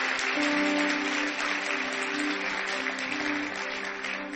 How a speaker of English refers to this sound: It's a good place to clap. And also, if you feel like clapping, you can clap your hands. It's under the rules, you can clap your hands.